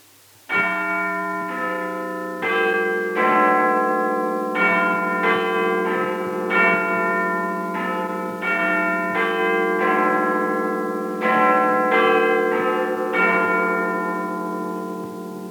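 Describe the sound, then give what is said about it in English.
Big Ben's clock tower bells, heard at midnight in the BBC's end-of-day broadcast sign-off, ring out a steady, melodic chime sequence, about one strike per second, each note rich and ringing as it decays, loud and clear with no talking. “In a few moments, the chimes of Big Ben.”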